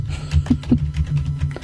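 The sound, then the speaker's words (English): Rapid, heavy typing on a computer keyboard, a quick irregular run of hard key clicks and thumps, fairly loud, with a low hum underneath and no talking. “Stop typing. God, looks like it sounds like you're beating the shit out of something.”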